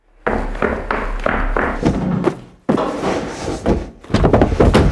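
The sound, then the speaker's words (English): A front door opens and shuts with a few solid thuds and knocks, followed by a sharp slam and a brief rattle, against a steady background hum. “Shh, quiet. The front door.”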